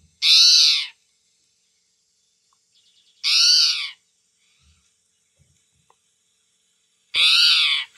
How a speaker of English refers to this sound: Yeah, so you just hear that like around the bushes and you can tell it's like a spotted towhee.